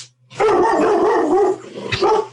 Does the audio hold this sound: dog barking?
yes